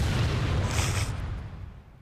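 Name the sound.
explosion sound effect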